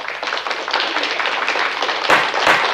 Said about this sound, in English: Let me get a round of applause.